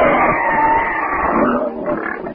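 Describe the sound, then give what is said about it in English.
A wild boar, Horta, grunts and snorts in a loud, continuous, rough burst as it darts across a jungle trail, the harsh noisy sound holding steady before tapering off at the end. “A horse, blacker than the deepening shadows, Horta the boar, darts across the trail.”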